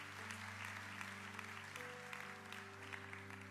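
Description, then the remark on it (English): Sustained applause from the audience at a Woodlake service, given for their guests, a dense steady clatter of many hands clapping throughout, with a low steady hum underneath and no voices. “So, Woodlakers, give all of our guests a huge round of applause.”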